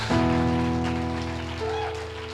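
Audience applause, a steady dense patter of many hands clapping, heard over a sustained keyboard chord that shifts partway through, loud and continuous for the whole moment.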